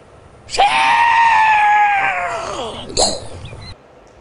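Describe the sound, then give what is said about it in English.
A South Carolina man vocally imitates the sound of an F-35 jet crashing into an empty field during a training exercise: a loud, sustained whining tone that slowly slides downward in pitch for about two seconds, then a short, sharp burst before it cuts off. “Now a South Carolina man has gone viral for his description of what that crash sounded like.”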